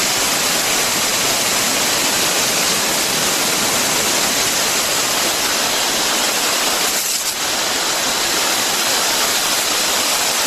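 A steady, loud rush of spray hisses without pause as a pressurized sprayer applies a foliar spray containing seaweed and a microbiological activator to a stone pine tree's foliage in Malibu, with one brief dip partway through. No one speaks.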